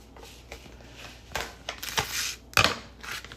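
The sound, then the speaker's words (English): A serrated knife saws through something, making a quick series of rough, scratchy strokes in an uneven rhythm, with one sharper crunch near the end. No one speaks. “Gets the serrated edge. Knife.”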